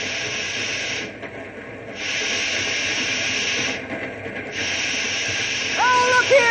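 A steam train hisses loudly in long, steady bursts with two short pauses, and a high metallic squeal of brakes rises near the end as it slows to stop because of a hot box on one of its middle cars.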